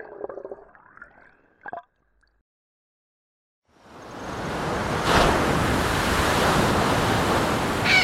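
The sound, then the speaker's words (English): After a few faint tonal tones and a short silence, loud ocean surf rushes in and keeps roaring steadily, with one wave crashing a little harder partway through. No one speaks. “Helped Kat upright out of the surf.”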